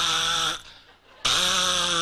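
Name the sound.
voice imitating crickets chirping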